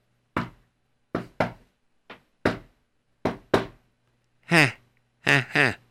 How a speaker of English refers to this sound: And he started to go to sleep, when suddenly he heard a strange knock.